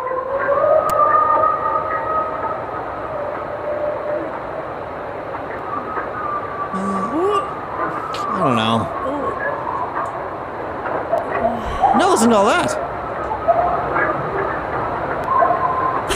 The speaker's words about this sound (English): I think that headline should really be Ohio woman records a bunch of coyotes.